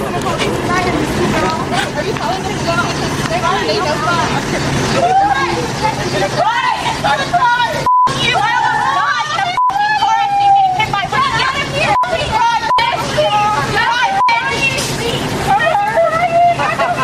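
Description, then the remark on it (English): A loud, agitated crowd of Black Lives Matter protesters swarms a woman's car, many voices shouting and clamoring at once, continuous, with brief sharp cutoffs in the noise. “This is the video of the Black Lives Matter mob swarming her car”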